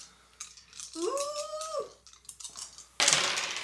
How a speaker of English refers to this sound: I mean, you're rolling four dice. That's... Yeah. That's pretty good. Okay, here we go.